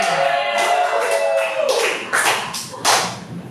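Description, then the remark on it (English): A comedy show audience bursts into steady, loud applause for comedian Tito Garza, a dense wash of many hands clapping with a few sharper claps and some cheering mixed in near the start. “Everybody, please give it up for Tito Garza!”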